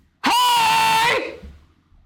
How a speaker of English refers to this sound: Should I mute myself for this scream?